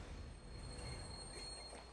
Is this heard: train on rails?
yes